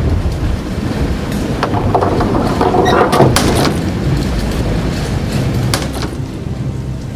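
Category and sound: household object, door being closed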